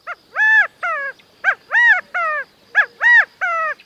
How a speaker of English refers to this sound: With such a large extended family, it's not surprising when a male California quail hops up onto a stump to gather the covey together with this rallying call.